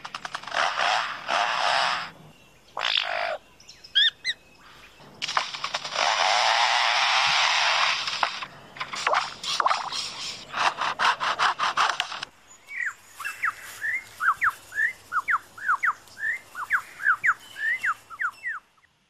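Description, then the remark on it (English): Rasping, chainsaw-like cutting sounds, a bird's imitation of foresters working with chainsaws, come in short bursts and one long sustained stretch, loud, then give way to a series of quick, high chirping calls. “And now the sounds of foresters and their chainsaws working nearby.”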